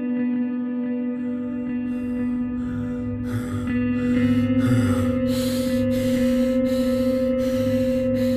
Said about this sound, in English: I was back in the laboratory, leaning against the wall and breathing in great, shuddering drafts of air.